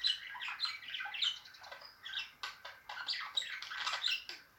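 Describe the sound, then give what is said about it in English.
Two pet budgies, one bright yellow and one greenish blue with a yellow head, chatter and chirp continuously, a busy overlapping mix of bright warbles, squeaks and short squawks with no pauses and no voices. “Really distinctive, very pretty little birds.”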